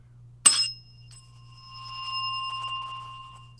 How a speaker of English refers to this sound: Do it one more time. Let's hear bell number one.